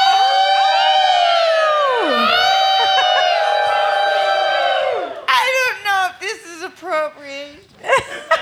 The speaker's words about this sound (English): The ladies in the club collectively howl.